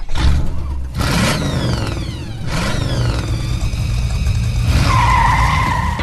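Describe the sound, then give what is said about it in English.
A loud car engine revs hard while tires screech and skid in long, sweeping squeals, with rising and falling pitch over a steady rumbling motor, intense, no voices. “Buckle up and start your engines.”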